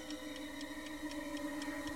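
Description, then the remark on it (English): A clock ticks in a quick, steady rhythm, about four ticks per second, over a sustained low tonal hum, part of a film scene's sound design with the ticking increasing in volume. No one speaks. “The sound design in the clip you just heard was excellent, with the ticking clock increasing in volume as David undergoes his savage meltdown, and the minimalist score contributing greatly to the atmosphere.”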